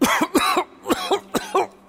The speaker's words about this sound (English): he's coughing up blood.